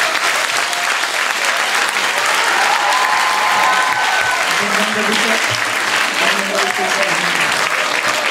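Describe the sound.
Loud, sustained applause from an audience fills the whole stretch, a dense steady clatter of many hands clapping, with faint voices murmuring and a few tonal sounds underneath.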